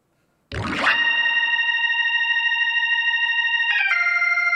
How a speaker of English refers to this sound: So I automated up the amount of distortion there.